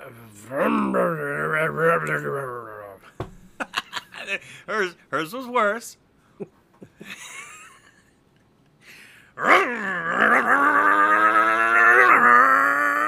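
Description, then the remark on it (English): A person mimics a chainsaw with their voice: a loud buzzing rev, a choppy run of sputtering bursts, a brief spoken remark, then another long, strained, droning rev. “let's hear your chainsaw”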